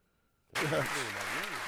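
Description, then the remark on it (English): After a moment of silence, hands break into steady applause, a dense loud wash of clapping that carries on while voices call out over it. “Hand claps.”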